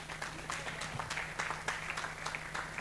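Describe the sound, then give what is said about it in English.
An audience applauds with dense, steady clapping, many hands together forming a continuous crackling wash of sharp claps at an even loudness throughout, with no voices standing out. “Let's clap for him.”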